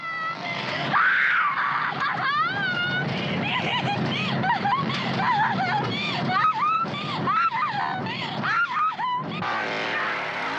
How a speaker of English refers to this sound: Yeah, she's screaming and she's laughing.